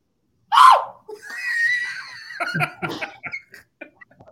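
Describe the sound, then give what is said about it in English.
A short, sharp panicked scream bursts out, a voice re-enacting the terrified shriek someone gave on turning around at the last minute and seeing a pole, followed by breathy, choppy vocal sounds like gasping laughter trailing off in quick bursts, fairly loud. “what was that scream you did when you turned around at the last minute and seen that pole?”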